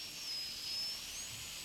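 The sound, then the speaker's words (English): Ultrasonic noise of a computer purring and squeaking, made audible by a heterodyne bat detector that lowers the ultrasound with an oscillator chip: a steady, fairly loud high-pitched hiss with a thin, faint whistling tone that wavers and drifts slightly upward, with no talking. “The sound in the background is my computer purring and squeaking.”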